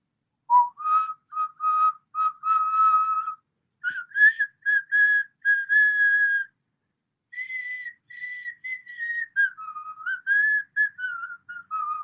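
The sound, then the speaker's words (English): A person whistles a short melodic tune by mouth, imitating the whistle of the character Omar Little, played by Michael K. Williams; clear, in two phrases with a brief pause between, the notes rising and sliding with no other sounds around it. “I want Lamar Jackson to be the last person out of the tunnel and to come out to the whistle of Omar Little, a.k.a. Michael K. Williams, and if you don't know that whistle, it goes something like this.”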